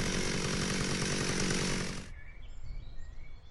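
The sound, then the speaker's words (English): A chainsaw roars loudly and steadily for about two seconds, then cuts off abruptly, leaving a low, quieter background rumble. “Nice chainsaw”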